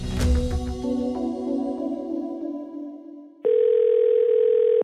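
A loud, steady telephone ringing tone sounds once for about a second and a half, right after a few seconds of fading musical notes, as a phone call is placed. No one speaks.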